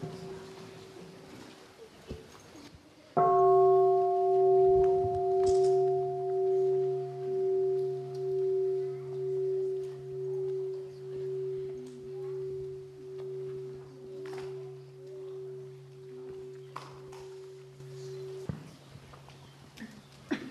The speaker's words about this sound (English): Let us breathe in and out with the bell.